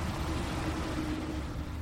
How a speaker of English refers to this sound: As cars drive by this experimental plot on the edge of forested land